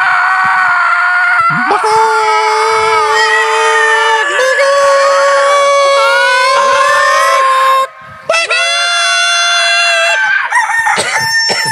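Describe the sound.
Several voices imitate chickens, squawking and crowing over one another in loud, drawn-out, overlapping calls, with a brief pause near the end before the squawking resumes.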